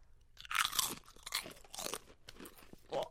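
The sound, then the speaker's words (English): Loud, crisp crunching as a potato chip is bitten and chewed, several sharp bursts of crackle in an uneven rhythm, with no talking. “Texture is one of the nicest textures I've seen in a chip.”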